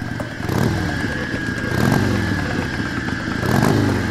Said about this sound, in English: A motorcycle slammed into you, going full speed in a way that seemed not ideal.